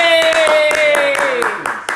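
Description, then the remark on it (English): Steady, rhythmic hand clapping, about nine sharp claps in quick succession, loud, with a drawn-out voice cheering underneath, congratulating someone on finishing their last week of school. “Clap it up.”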